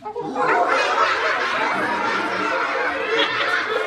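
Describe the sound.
An audience, asked to practice sound effects, imitates monkeys, with overlapping high-pitched hoots and chattering cries blending into a loud, continuous din for about four seconds, mixed with some laughter.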